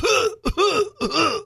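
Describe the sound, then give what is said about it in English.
A person coughs and clears their throat: three rough, voiced bursts in quick succession with brief gaps between them, fairly loud, and no talking; the cough that opens a rock album played on a turntable. “dropped a needle in it, and that started with that cough.”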